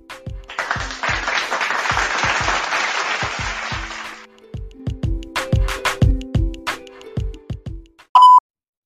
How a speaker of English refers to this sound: Okay, hold on. I got it. Applause.